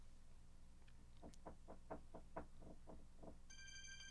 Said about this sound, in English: There's my phone. Let me hit the ignore.